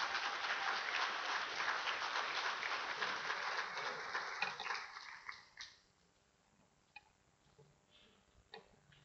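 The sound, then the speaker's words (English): An audience claps steadily as a girl comes up to join the speaker, a dense, loud wash of applause that fades out after about five seconds, leaving near-silence broken by a few faint scattered claps. “Y'all better clap for this girl as she comes up.”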